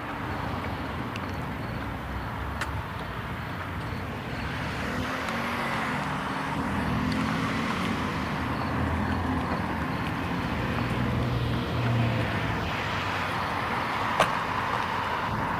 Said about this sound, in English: Two cars in this intersection. It just boggles me that there's so much traffic on this road.